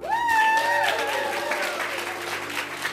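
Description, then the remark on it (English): A large audience applauds after a poetry performance, a dense, continuous wash of clapping, with a rising cheer or whoop standing out near the start as people rise to their feet cheering, before the clapping carries on alone. “Her performance moves the audience. The applause rises, then so do the people, on their feet, cheering her.”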